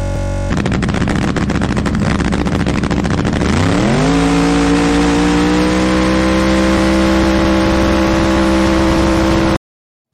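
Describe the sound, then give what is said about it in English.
A loud drag race car engine roars, crackling at first, then its pitch sweeps sharply upward and holds at a high, steady scream as it accelerates hard during a race, hitting its rev limiter at about 6,500 RPM, with no talking. “For some reason, my car was going on the limiter about 6,500 RPMs, and the limiter was set at 8,000.”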